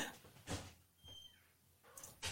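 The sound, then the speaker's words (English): A cat at a door, wanting to be let out, gives one thin, high meow between a couple of sharp knocks or clunks, like a door or cupboard being handled, with no one talking. “Cats can be so annoying. They always want on the other side of the door.”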